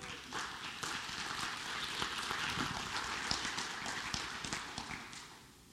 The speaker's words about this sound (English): It's funny watching y'all clap.